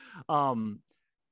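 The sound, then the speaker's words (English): An agitated dog lets out one loud, drawn-out bark, preceded by a brief short yelp, and then falls quiet. “My dog is very agitated about something.”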